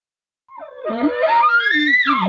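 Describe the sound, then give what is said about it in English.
A bull's call to a cow: a low tone that climbs into a loud, sustained high whistle lasting nearly two seconds, with a brief dip near the end. No voices are heard. “He say he's trying to call the cow over to him. He hears you cow call, and all of a sudden you hear the bull do this.”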